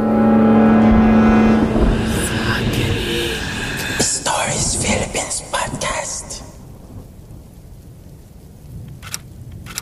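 Quick, dense clicking of keys being typed fast on a computer keyboard in an office cubicle, rattling in a busy burst before thinning to a few scattered taps, following a fading tonal hum at the start.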